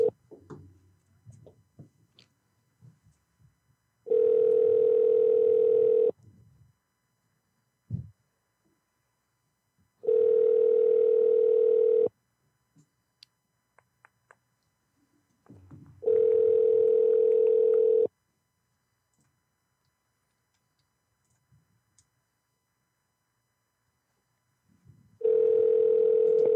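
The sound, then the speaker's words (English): A telephone ringback tone repeats while a call to the Society Hotel in Portland connects: four steady, loud buzzing tones, each about two seconds long with roughly four seconds of near-silence between, the last one cut short. “Did it start over? The phone?”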